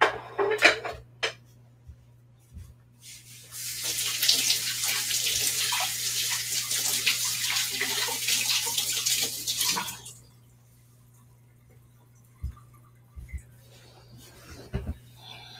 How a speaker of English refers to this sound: Oh my God, there's so much rice stuck to my hands. I feel like I shouldn't even try and get it off my hands because I'm about to get more stuck to my hands. Let me actually wash my hands off really quick because I want some water.